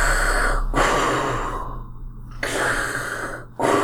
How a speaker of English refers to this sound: And you hear this heavy breathing echoing toward you guys.